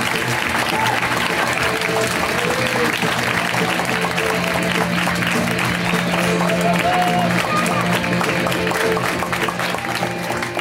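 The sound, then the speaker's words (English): A large show audience claps loudly and steadily for about ten seconds to welcome a guest onto the show, with scattered cheers and whoops rising from the crowd throughout. “she just recently moved to LA, and so we're going to welcome her with such open hearts and giant round of clapping.”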